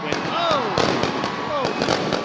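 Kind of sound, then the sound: sound effect, fireworks exploding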